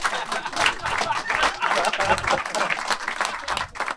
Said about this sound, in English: All claps, no groans.